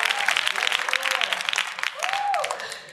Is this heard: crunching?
no